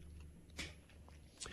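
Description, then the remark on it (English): A quiet sip of water: two brief, soft wet mouth sounds about a second apart against a faint background hiss, with no talking. “Yeah, I'll take a sip of water.”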